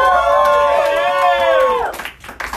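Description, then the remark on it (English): An audience at a comedy show at the Backdoor Comedy claps and cheers, with a loud sustained whoop riding over steady applause for about two seconds before the noise drops off into a few scattered claps. “There you guys, give it up.”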